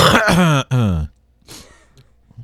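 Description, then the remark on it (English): A loud cough with a rough, throat-clearing rasp right onto the windscreen of a shared microphone that other people use, followed by a softer breathy rasp and a faint final grunt. “A hero is someone who doesn't cough on the windscreen of the mic that other people use.”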